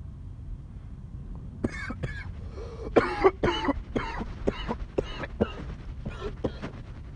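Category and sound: human body sound, coughing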